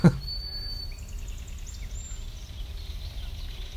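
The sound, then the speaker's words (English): A faint belted kingfisher comes by, rattling off a quick run of harsh chattering notes amid thin high bird whistles and low outdoor rumble. “That chattering is a kingfisher coming by.”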